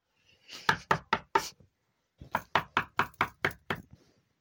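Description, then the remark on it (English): Sharp knocking on a back door in two bursts: a quick run of four or five raps, a short pause, then a longer series of about seven firm, evenly spaced knocks. “She feels like she's waiting for the other shoe to drop, and sure enough, shortly thereafter, at her back door.”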